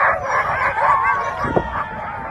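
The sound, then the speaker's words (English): A pack of sled dogs in Nunavik barks and yelps all at once, a dense, continuous chorus of overlapping yaps with one sharper bark standing out near the end, loud, with no voices. “Paulusi and others have fought to revive the dog sledding tradition that was almost wiped out.”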